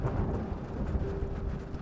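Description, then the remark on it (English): A steady thunderstorm: a low, rolling rumble of thunder over a constant wash of rain, moderately loud and unbroken, with no voices. “But with the storm still laying haymakers, the house looked more foreboding than he remembered.”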